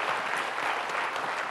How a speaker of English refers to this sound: let's give a round of applause to Representative Mayor Turner and Ross Ramsey.